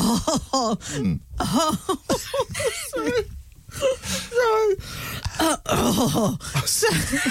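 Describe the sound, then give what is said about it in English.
A man clears his throat over and over in loud, rasping bursts mixed with strained, groaning vocal sounds, the pitch wavering up and down between short pauses. “Just clearing his throat now.”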